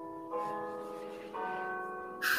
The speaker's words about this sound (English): Here come the church bells. I could have been a church bell. They're extra loud today. Is that because your window's open? My window's not open, but they did get louder after Easter.